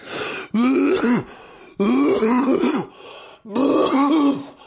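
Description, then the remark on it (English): Three loud, exaggerated fake coughs, drawn out and strongly voiced like theatrical throat-clearing, evenly spaced with short pauses between, with no talking. “Maybe that started out as a real cough, but it got to a point where it was not even close to real.”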